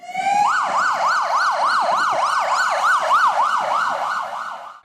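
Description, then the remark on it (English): A loud ambulance siren wails in a fast, repeating up-and-down yelp, about a dozen rapid sweeps over a few seconds, steady with faint road rumble beneath, then cuts off abruptly. “Ambulance on standby.”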